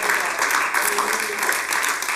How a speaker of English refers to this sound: Let's clap our hands to the Lord and thank him for that. Praise God.